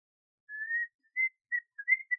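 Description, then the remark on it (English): A person whistles by blowing air out, a short tune of clean, pure notes: one longer rising tone followed by several quick chirpy bursts, clear with no talking. “See, I blow out. I don't suck in.”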